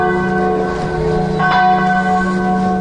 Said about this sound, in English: Enough of these fucking church bells. God, what's with these people? Nobody goes to the church. They just pay for them.